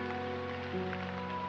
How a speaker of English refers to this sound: And it's raining, gentle but steady. And you can hear the rain on the roof, perhaps, and it hits the window from time to time, and it's just this beautiful drizzle.